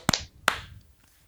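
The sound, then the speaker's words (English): Two sharp hand claps made to sync audio for a recording after a 3, 2, 1 countdown, the second following the first about a third of a second later, each a crisp, loud snap that decays quickly, with no talking. “And then we'll clap sync.”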